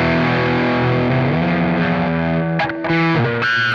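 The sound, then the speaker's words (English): A loud electric guitar played through a Spruce Effects distortion pedal plays sustained, saturated chords with a thick buzzing tone, briefly cutting out near the end before ringing back in. “I can't play it on this pedal.”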